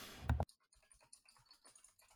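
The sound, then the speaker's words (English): Rapid clicking of computer keys: a dense burst of loud keystrokes up front, then quieter, irregular tapping that trails on for the rest of the moment. “Sorry, my keyboard's really loud, folks.”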